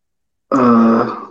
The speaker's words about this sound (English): Yeah, sorry, I've been coughing a lot, so I've been muting myself.